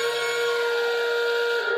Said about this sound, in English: as much as it pains me, give them a quick honk on the justified conspiracy alarm.